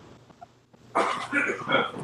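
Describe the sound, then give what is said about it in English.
After a brief quiet moment, someone in a house coughs several times in quick succession, harsh bursts running together, moderately loud, with no talking. “Who just coughed?”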